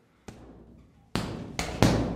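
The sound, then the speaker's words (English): Four heavy thuds of punches landing on a punching bag set up in an outhouse on a farm in Munavay, fairly loud, coming at an uneven pace with a quick flurry of three near the end and no talking. “has set up a punching bag in an outhouse on the farm in Munavay”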